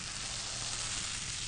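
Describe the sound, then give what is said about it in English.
A steady, soft fizzing hiss of a carbonated Mediterranean tonic bubbling in a glass, continuous and even for the whole moment, with tiny crackling pops and no voices. “Can you hear the bubbling?”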